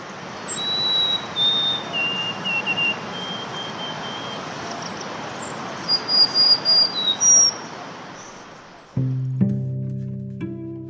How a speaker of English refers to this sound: For the next few weeks, I'll visit the park and listen for this polyglot, who looks just like all the other sparrows, until he opens his beak and reveals his secret.